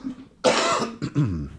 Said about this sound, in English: Oh, sorry, I'm coughing, people. I'm still getting over my cold.